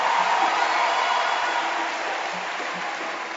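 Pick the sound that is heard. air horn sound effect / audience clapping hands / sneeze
audience clapping hands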